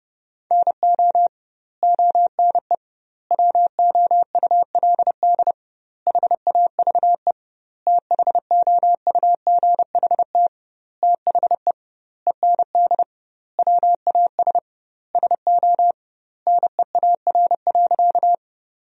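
Rapid Morse code at about 30 words per minute with doubled word spacing, sending sentences made from the 300 most common words: a single steady mid-pitched tone keyed into quick dots and dashes, grouped into bursts with short pauses between words. No voices.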